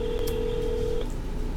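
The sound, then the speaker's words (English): A steady electronic phone ringing tone holds for about a second, then cuts off abruptly as the call connects, leaving only faint line hiss. No one speaks. “So what you just heard, basically the phone rang and then it like picked up.”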